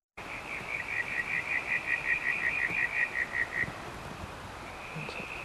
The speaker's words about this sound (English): These guys they're calling now are cousins of these fellas. They're in the same frog group.